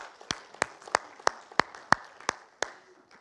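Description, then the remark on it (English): An audience applauding, with sharp, evenly spaced claps about three per second standing out over a softer, continuous wash of many hands clapping, moderately loud. “I want to give you a round of applause.”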